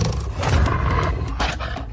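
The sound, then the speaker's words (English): A deep, rumbling wolf growl fills the moment, loud, with a continuous guttural roar and rough bursts of breathy snarling, no voices alongside. “Stay back! Stay back, wolf!”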